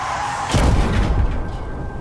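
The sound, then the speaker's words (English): A car crash impact as a braking car runs into the back of a stopped newer Chevy on Highway 61: one sudden, loud, heavy thud with a deep rumbling crunch that lasts about a second before easing into a steady low hum, with no voices. “She slammed on the brakes, but it was too late.”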